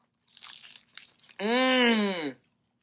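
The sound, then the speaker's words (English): A loud crunch of biting into a crispy fried chicken taco with sauce, a few crackly bursts over about a second, followed by a sustained pleased vocal hum from the eater. “We're going to take the bite. Tell us how. Listen to that crunch, guys.”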